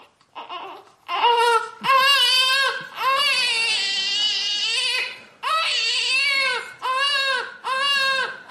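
A baby crying loudly in a string of high, strained wails, each one rising and falling in pitch, with short gasping breaths between them and no talking.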